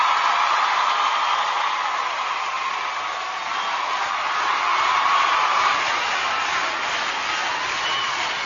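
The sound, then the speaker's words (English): Sustained applause from a sizable crowd, a dense, steady wash of clapping that holds at an even level for several seconds without pauses or voices. “So there's your mom applause.”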